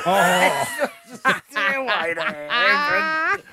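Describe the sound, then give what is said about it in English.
Someone hums in breathy, rhythmic bursts with short gaps between them, sounding more like pulsed breathing than a smooth melody. “It's like what you're doing is like rhythmic breathing.”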